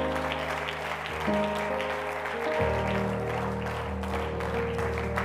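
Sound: audience clapping hands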